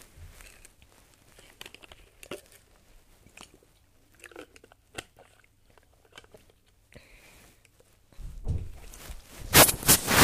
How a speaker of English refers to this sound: Some premium water drinking content there for you all.